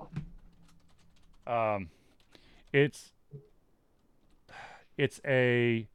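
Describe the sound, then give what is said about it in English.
Rapid, light keyboard typing clicks, scattered in short bursts, with a person's brief vocal murmurs and speech-like sounds cutting in between; someone typing into a chat. “I'm going to type this in the chat here, but”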